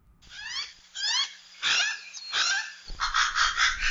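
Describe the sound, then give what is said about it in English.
Hawaiian crows (alala), a rare native Hawaiian bird now extinct in the wild, call in a run of loud, warbling cries, several wavering upward and downward in pitch, followed by a harsher, raspy stretch of calling at the end. “Today, Manu Minute's host, Patrick Hart, offers you a chance to imagine what the forests might have sounded like with the song of the Hawaiian crow.”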